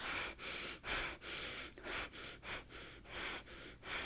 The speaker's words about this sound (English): So now what I want you to do is to breathe really quickly and shallowly in your chest. So kind of that panting breathing, like.